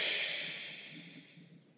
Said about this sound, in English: So let's breathe a few rounds of Lion's Breath together. Breathing in through the nose deeply. Open mouth, stick your tongue out and exhale all your breath.